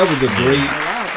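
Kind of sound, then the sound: crowd, applause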